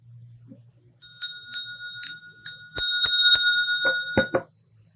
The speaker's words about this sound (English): I ring my bell, and my mom rings hers.